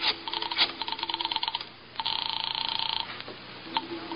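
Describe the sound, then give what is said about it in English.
A rotary telephone is dialed to call police headquarters, with quick bursts of rotary clicks, then a steady ringing tone on the line for about a second, followed by a few more faint clicks. “Just a little phone call.”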